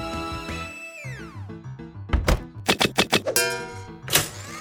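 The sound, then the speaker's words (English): A baseball clatters inside a blender: a burst of hard, rapid thunks and knocking rattles, loud and uneven, over a backdrop of sustained tones and a sliding, falling pitch. “I like the way a baseball in a blender sounds.”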